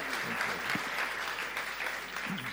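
An audience claps steadily, a dense, sustained patter of many hands at an even loudness with no clear rhythm, and a few faint voices murmuring underneath.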